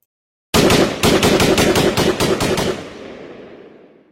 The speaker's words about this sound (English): Gunshots began to ring out. I'm pretty sure the explorer was probably firing away for dear life.